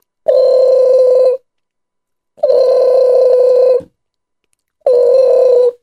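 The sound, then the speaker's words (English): A telephone rings three times, each steady, buzzy electronic ring lasting about a second with a brief pause between, loud with no one speaking. “And about 3 days later, he got a phone call.”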